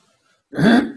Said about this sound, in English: Excuse me, I forget to mute before I clear my throat, but I'll try to remember.